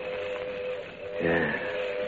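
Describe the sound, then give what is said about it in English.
A steam train whistle sounds in a steady, sustained tone over a hissing background as the late-running train arrives, swelling louder and richer for a moment midway before settling back. “Here she comes now.”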